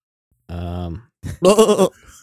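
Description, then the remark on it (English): A person mimics a goat's bleat with two short, wavering voiced calls, the second louder and more strained, clear with no other sounds around them. “Yeah, I feel like bleeding is for goats.”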